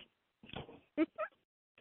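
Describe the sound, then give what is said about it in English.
A dog gives a few short, sharp barks: a rough burst, then two quick yips with a brief pause, and a fainter sound at the very end. “this week you have dogs barking because we all know how real it is in our house.”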